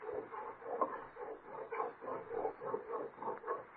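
A hacksaw blade scrapes back and forth on metal without biting in, in a steady run of roughly ten quick, rasping strokes, each a short gritty burst at an even rhythm, with no voices.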